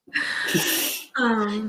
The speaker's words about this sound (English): because she gasped.